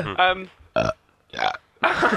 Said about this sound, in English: Chain burping. I wish I could burp on command.